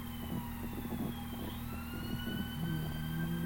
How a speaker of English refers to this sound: There's a siren about to come by.